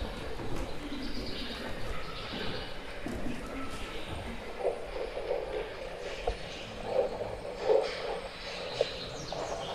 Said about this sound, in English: Are the bird sounds from this one or from a different work? From outside.